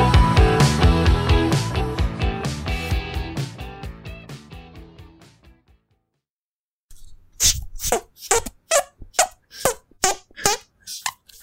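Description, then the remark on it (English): A stretch of music fades into silence, then a run of about nine squelchy, breathy hand farts plays in a quick rhythmic sequence, fairly loud and with no talking. “Hand fart serenade to finish.”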